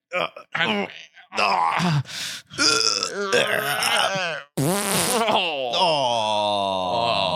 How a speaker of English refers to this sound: Nothing like a fart joke for a good vibe, right? Nothing like a fart joke.